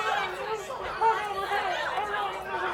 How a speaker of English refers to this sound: Suddenly, you see a ruckus of people gathering around a monument.